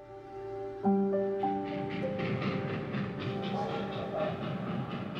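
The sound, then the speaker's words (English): A train whistle, heard from a second-story window, sounds a long, steady multi-note blast that shifts pitch partway through, over the rumble and rhythmic clatter of a passing train, loud throughout. “Forty-four-year-old Jane Toppan could hear the train whistle from her second-story window.”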